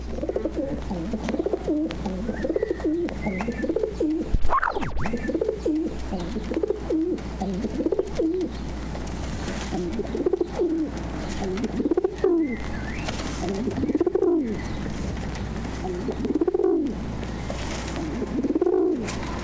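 Feral pigeons coo repeatedly in soft, throaty, rolling phrases, several birds overlapping in a steady rhythm over a low background hum, with no talking.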